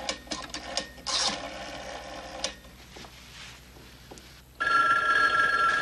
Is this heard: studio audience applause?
no